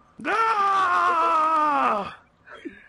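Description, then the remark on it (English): A person voices a mock scream of pain, one loud, drawn-out cry lasting about two seconds before dropping off, followed by a faint brief vocal sound. “I, like, make the scream.”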